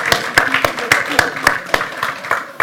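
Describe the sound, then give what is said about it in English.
A church audience applauds the mothers standing up to receive a gift, with a steady patter of many hands clapping and sharper individual claps standing out, plus a faint murmur of voices beneath. “And can we have the rest of the church give them a big round of applause?”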